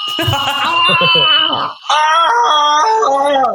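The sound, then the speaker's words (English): A man's voice imitates a scream in two loud, strained, drawn-out yells, separated by a quick breath, with the second pitched higher and held steadier. “Wait, I'm going to do the guy screaming this time.”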